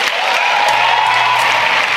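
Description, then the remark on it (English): A large crowd gives a standing ovation, clapping loudly and steadily in a dense, sustained wash of hands with no pause. “Listen to that applause. Standing ovation.”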